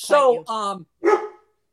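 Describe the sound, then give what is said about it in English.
The speaker's own dog barks three times loudly, two quick barks back to back, then a third after a brief pause. “My dog.”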